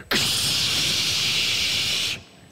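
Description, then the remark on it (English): A voice imitates a water main breaking off at the foundation of a house, in the crawl space under the floor where the water was being shut off, with one loud, steady, breathy hiss that starts abruptly, holds for about two seconds, then cuts off sharply. No words are spoken. “He goes in, and right where he turns the water off, I imagine that valve had not been turned in a very, very, very, very long time, and the water line, the water main broke off at the foundation,”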